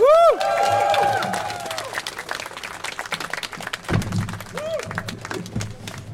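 A crowd applauds with dense, steady clapping for several seconds, opening loud with a rising and falling whoop or whistle, then settling slightly softer, with another brief call near the end.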